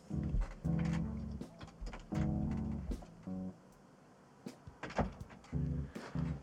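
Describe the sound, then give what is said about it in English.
A door is opened and shut to let a cat out of the room, with creaking, groaning hinge sounds in several bursts and a few sharp knocks and clicks between them. “The cat would like to be let out of the room.”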